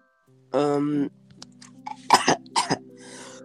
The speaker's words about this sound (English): Did I give you my cough? I think you might have transported it through the phone.